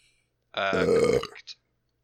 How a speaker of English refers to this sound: Can you answer that again? Because all I heard was burp. Sorry, I'm gassy.